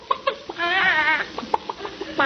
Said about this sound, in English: What are you doing with that chicken? Oh, we use only fresh eggs. Now, just sit back while I put Betty on your head. Go ahead, Betty. Do your stuff.